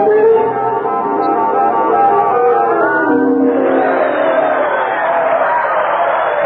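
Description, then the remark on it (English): A large crowd of people outside a window cheers and shouts continuously for the head of state, a loud, dense roar of many voices that swells slightly midway and holds steady throughout. “That infernal racket is making my head explode. But it's the people, sir.”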